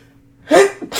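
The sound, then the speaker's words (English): A single sneeze with a short voiced build-up followed by a sharp, breathy burst after a quiet start. “Sneezed right in your fucking tattoo.”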